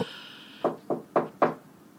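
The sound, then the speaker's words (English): Four firm knocks on a door in an uneven rhythm: one, then a short gap before three more. No voices, just quiet room tone around them. “Oh, well, somebody's at my door.”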